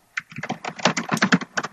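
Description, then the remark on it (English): Rapid, furious typing on a computer keyboard, a dense burst of clacking keystrokes with uneven rhythm, moderately loud, with no voices. “Are you Googling it? I just heard furious typing right now.”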